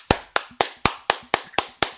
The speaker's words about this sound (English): My mom, like, stop clapping! Stop it! They can't hear you.